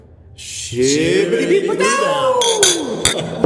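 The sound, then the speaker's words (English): Beer glasses clink together in a toast, a couple of bright, brief taps ringing out over people's voices speaking and exclaiming. “We'll give a little cheers here and then talk about the taste of the beer, maybe.”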